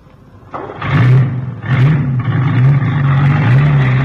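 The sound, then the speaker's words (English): A truck engine, started on the key, turns over and roars to life, revving loudly in a couple of surges before settling into a steady, rumbling drone as a professor from the London Zoo drives it off. “Hey, where's he going with the truck?”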